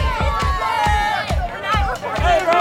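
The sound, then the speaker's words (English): An angry crowd at night outside a state capitol building, roaring and shouting, many raised voices overlapping in a continuous agitated din, with loud rhythmic thumps repeating about twice a second underneath. “A night of turmoil and tension right outside of the state capitol building. Things took a turn, crowd got angry, and it led to statues coming down.”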